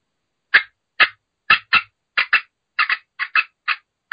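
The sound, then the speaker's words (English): An imitated hen turkey cutting sequence, cut back in answer to an aggressive hen: about eleven sharp, loud, high-pitched clucks in quick, uneven bursts, some paired, with silence between them and no talking. “So then I'm going to cut back at her with a little sequence like this.”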